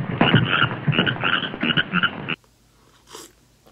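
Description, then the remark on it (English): A frog croaks loudly in a quick, rattling series of pulses for about two seconds, then stops abruptly, leaving near silence with one faint, brief noise. “Oh, you've got a frog in your throat.”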